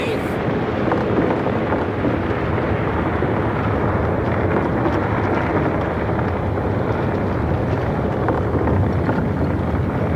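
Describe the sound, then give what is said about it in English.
A cliff collapses with a dense, continuous roar of tumbling rock, heavy low rumbling mixed with gritty crackle that stays loud and steady for the full ten seconds. “Come on, Sergeant, the whole cliff's coming down!”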